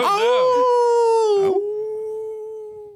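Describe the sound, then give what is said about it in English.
A person imitates a bird howling, opening with a wavering, rising cry that settles into a long, steady, sustained note, loud, fading slightly over about three seconds. “A bird flies down out of the sky and begins howling. Howling.”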